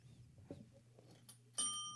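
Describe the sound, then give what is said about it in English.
A single bright notification bell dings near the end, its clear metallic tone ringing on and slowly fading, after a quiet stretch with a low hum and a few soft bumps. “Remember to like, share, subscribe, hit that bell notification.”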